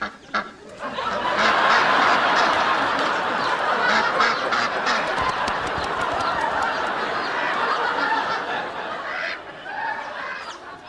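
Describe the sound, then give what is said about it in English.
A dense, continuous chorus of ducks or geese quacking and honking, loud, sustained for about eleven seconds with overlapping calls and no talking. “So, they now have a duck.”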